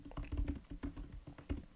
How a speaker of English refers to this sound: Because look, you could keep typing.